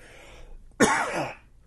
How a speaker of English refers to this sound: There, I was trying to swish it around and I let it go back a little too far and caused me to cough.